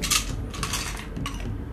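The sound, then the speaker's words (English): Dice clatter and rattle as they tumble across a table in a few quick bursts, moderately loud, with no talking. “Oh, that's the wrong dice. Where are my dice at?”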